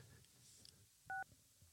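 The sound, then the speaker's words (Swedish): A single short touch-tone dialing beep as a phone call is placed, a clean two-pitch electronic tone lasting a fraction of a second, sounds clearly over a quiet, faintly rumbling background. “Då ringer vi till Carolina här då”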